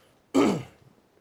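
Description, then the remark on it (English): A single short cough bursts out, abrupt and fairly loud, then fades quickly into quiet. No one speaks. “I'm sorry that I keep coughing after each sentence”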